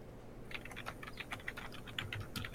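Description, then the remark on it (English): Rapid, continuous clatter of keys on a computer keyboard as someone types in a chat, many quick clicks in an uneven, hurried rhythm, moderately loud with no talking. “Uh-oh, I hear Furious typing.”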